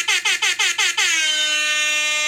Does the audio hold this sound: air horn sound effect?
yes